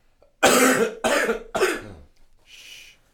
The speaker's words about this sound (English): You can cough if you want.